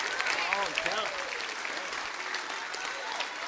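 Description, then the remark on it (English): A church audience applauds the word of God during a sermon, with steady, dense clapping that fills the whole stretch, while a voice rises and falls over the noise of the crowd. “I love when you clap. I love when you clap for the word of God.”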